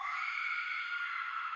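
A woman's scream, one sustained, high-pitched cry held at a steady, loud level with no break for the whole moment, and no talking over it.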